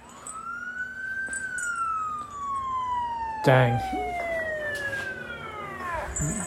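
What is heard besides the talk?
police car siren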